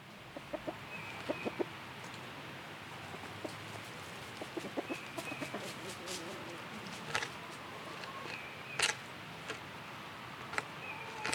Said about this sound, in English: My chickens were around, eating the scraps.